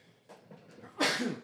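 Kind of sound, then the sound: human body sound, sneeze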